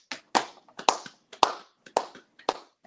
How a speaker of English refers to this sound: Let's go ahead and clap for a real one.